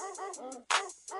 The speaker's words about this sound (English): Oh, you hear that barking? It's getting closer.